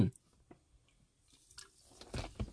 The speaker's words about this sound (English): So, I'll take a sip of my drink here. Rockstar Energy.